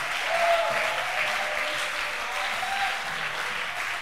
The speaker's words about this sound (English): I want us to clap our hands for the singers, for the dancers.